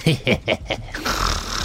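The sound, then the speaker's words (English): A voice imitates snoring: a quick run of five rough, rhythmic snorts, trailing into a longer breathy, hissing exhale. “And somewhere on the rafters, we see a very crafty rogue, snoring and dreaming out loud.”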